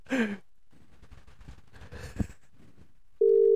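A breathy sigh and soft rustling are followed by a sudden, loud, steady electronic tone, the ringing tone of an outgoing phone call made to test the phone's audio output, cut off as it begins.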